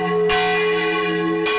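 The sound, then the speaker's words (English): Church bells in a town ring out loudly, with two clanging strikes over a rich, sustained hum of overlapping tones that keep resonating between them. No voices are heard. “How do you feel when the bells in town ring?”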